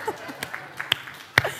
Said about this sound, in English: Can we just praise God for a second? Can you guys clap?